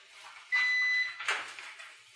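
A single sustained electronic beep, a warning tone signalling a low health bar, holds steady for under a second, followed by a brief rustling burst over faint background noise.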